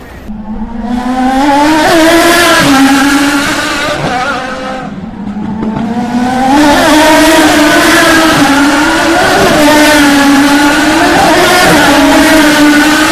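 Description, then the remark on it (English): Loud, high-pitched IndyCar race engines whine continuously, swelling and dipping as the cars roar past in succession at close to 200 miles an hour at the Baltimore Grand Prix, their tones shifting with each pass over a dense, sustained wall of motor noise. “IndyCars, the fastest cars on earth, winning by you at 200 miles an hour.”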